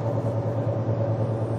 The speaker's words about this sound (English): We're in Kentucky, headed to Missouri. Goodness, what is this truck doing?